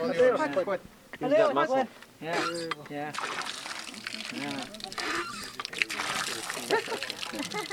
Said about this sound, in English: tries out the water pump in front of her brand new home, the first on the reservation built with Flexcrete.